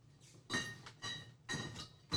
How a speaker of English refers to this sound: I can pick that up. I can pick up all the clinking you're making. Just right next to us.